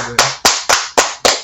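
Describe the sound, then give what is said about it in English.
Loud hand claps at a steady, fairly quick pace, about six sharp slaps in a row, each with a short fading tail. No one speaks. “Maybe clapping, you know.”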